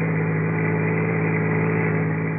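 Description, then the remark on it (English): A car engine hums steadily as the vehicle drives along the Pacific Palisades late in the evening, a continuous low drone with an even, unchanging pitch and no voices over it. “And late that evening, I found myself out on the Pacific Palisades”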